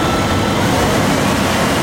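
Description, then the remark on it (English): A big rig truck engine with air brakes and a big fan roars steadily and loudly throughout, a dense, grumbling low rumble layered with broad hissing noise, with no pauses and no voices. “That's definitely a big rig. I hear air brakes in it.”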